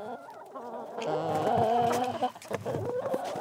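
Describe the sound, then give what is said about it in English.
Several chickens cluck, with a drawn-out warbling call in the middle giving way to short, choppy clucks over a steady outdoor background, on a shared community property with gardens, an orchard, a pond and goats. No one speaks. “We check out the gardens and the orchard, the pond, the sauna, the bonfire pit, the chickens and all the goats.”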